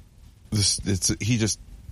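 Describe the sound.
A cat named Joe Kitty lets out a drawn-out meow in three quick voiced bursts, its rising and falling pitch oddly resembling a spoken word, with quiet background otherwise.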